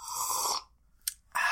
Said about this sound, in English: Listen, I want you to hear what it sounds like when I sip coffee.